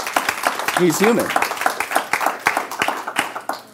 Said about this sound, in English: Come on, we can clap that up.